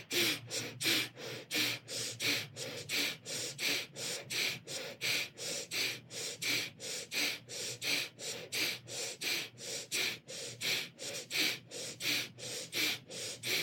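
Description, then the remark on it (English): Rapid, forceful rhythmic breathing during a breathing exercise, short sharp breaths pumping in a steady fast cycle of roughly two per second, clear with no talking. “And the mantra Satnam, Satnam, Satnam, Satnam, Satnam, Satnam is running through your head, keeping your mind on track as you're breathing.”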